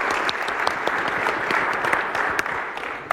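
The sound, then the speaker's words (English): An audience at a presentation claps steadily after a technology demo, a dense, even wash of many hands with scattered sharper individual claps, holding at a fairly loud level throughout with no voices. “Thank you, big applause.”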